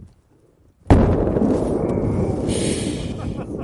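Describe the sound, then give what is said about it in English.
After a brief quiet moment, the world's biggest aerial firework, in a record attempt set off at the push of a button, detonates on launch with a sudden loud blast, followed by a sustained roaring, crackling rumble that continues without letting up. “The world's biggest aerial firework was a fiery fail.”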